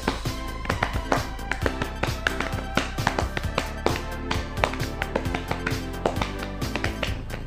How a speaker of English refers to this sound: And he stood on that, and every time he would walk, it would make a sound because his wooden rod, which was there in one leg, would go tick, tick, tick, tick, tick, tick, tick, tick. That's a tap dance.